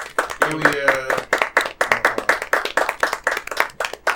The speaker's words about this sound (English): I think we should clap it up for all of us here, all of our. Hey, supporters. All right, yeah, sure. Let's clap it up.